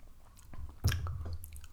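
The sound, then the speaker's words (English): A sip of tequila: a brief, quiet slurp from the lips followed by soft mouth and swallowing noises, with no one talking. “I'm going to take another little sip. A little sip of this tequila.”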